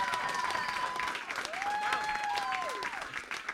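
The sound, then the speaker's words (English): An audience answers a question by a round of applause, clapping steadily for several seconds, a dense crackle of clapping at a constant level, with a few gliding whistles rising and falling over it. “I want to throw out to the audience, do you think, by a round of applause, do you think the three of us could be friends?”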